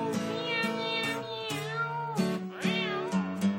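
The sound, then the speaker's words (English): Four drawn-out, meow-like cries from a voice imitating a cat, loud, sung over a steady, humming musical backing with a low bass line. “Meow, meow, meow, meow.”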